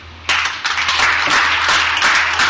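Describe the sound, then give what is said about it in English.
Crowd members whose parents are still married clap their hands when asked, many hands clapping at once in a dense, loud patter that starts suddenly and holds for a couple of seconds with no voices over it. “Clap your hands if your parents are still married.”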